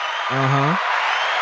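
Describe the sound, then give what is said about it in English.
An applause sound effect: a steady wash of dense clapping noise fills the short clip, with a brief voiced cheer-like tone rising over it partway through. “Let me give them applause real quick.”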